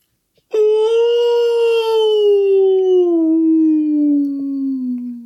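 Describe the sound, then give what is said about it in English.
A dog named Mitch lets out one long, loud howl that starts abruptly and slowly slides down in pitch over about five seconds, with no talking. “He just said hi and whale.”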